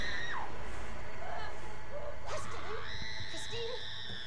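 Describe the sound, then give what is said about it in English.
Shrill, sustained screaming from a horror film, the high wavering cries rising and falling in pitch over a loud, dense rumbling background for several seconds. “Oh my god, stop screaming.”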